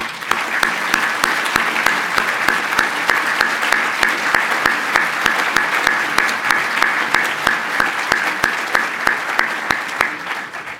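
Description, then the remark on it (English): Sustained applause from a sizable lecture audience for World War II veterans, steady dense clapping that carries on for about ten seconds at an even level without voices over it. “And if they are here and would be willing to be recognized, I would ask them to stand or put their hands up and let us all give them a round of applause.”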